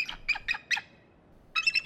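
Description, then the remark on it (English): A bird brought on a show squawks in four quick, harsh, high-pitched bursts, pauses briefly, then lets out a longer, rapid run of squawks. No one speaks. “Next time I bring a bird on the show, I need to remember they like to break the fourth wall.”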